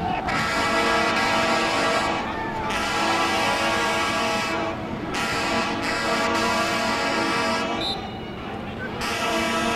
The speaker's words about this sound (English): Heard a big truck horn in the background. There were about six big cement mixers in the parade today. Maybe one of them. They were blowing their horns.